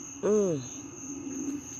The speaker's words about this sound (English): You hear these crickets?